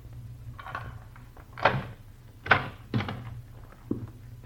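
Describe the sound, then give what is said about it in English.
A door at a rooming house opens with a handful of separate wooden clunks and latch rattles, moderately loud, spaced irregularly over a steady low hum. No one speaks. “Close that door.”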